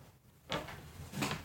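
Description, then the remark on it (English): Two solid wooden knocks about three-quarters of a second apart, fairly loud, as the side of a broken wooden chair is hit back into place. “Here, just hit that side in.”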